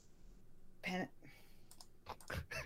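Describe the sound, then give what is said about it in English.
A few quick clicks and taps like keystrokes on a computer keyboard, irregular, with short bursts around the first and final seconds over a quiet background. “Are you typing it in right now?”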